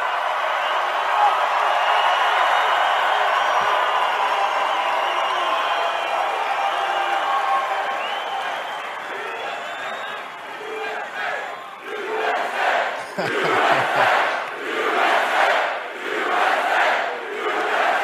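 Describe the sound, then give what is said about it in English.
A huge crowd at a Trump rally roars and cheers in a sustained wall of voices, then breaks into a rhythmic chant with loud pulsing beats toward the end. “I am so hoping that in a few short minutes you start chanting something else.”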